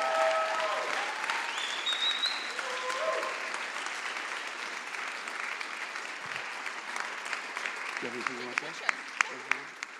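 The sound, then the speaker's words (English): An audience in church claps steadily for about ten seconds for some 15 people who raised their hands, a dense, even patter of many hands, with a few brief cheers early on and a voice speaking under the applause near the end. “You guys can put your hands together. It's okay to clap in church.”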